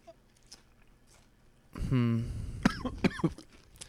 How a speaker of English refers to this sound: Very displeased. I just coughed up. Coughed up a little bit.